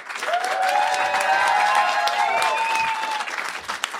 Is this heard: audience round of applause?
yes